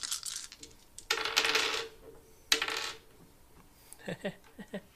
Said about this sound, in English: Two hits. I rolled five dice.